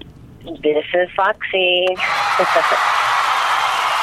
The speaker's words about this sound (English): Yay, the crowd's going crazy.